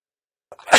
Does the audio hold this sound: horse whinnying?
no